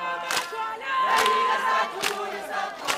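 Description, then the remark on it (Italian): Hundreds of people shout together in unison the chant 'Izwe Lethu' ('our land'), a dense wall of voices with sustained, pitched chanting and sharp rhythmic bursts rising above the roar, on the grassy square in front of the Sharpeville police station. “Ogni tanto però, per non si sa quale strana legge naturale, quel coro riesce a propagarsi come un incendio nella fiumana di gente, e centinaia di persone cominciano a gridare con una sola voce.”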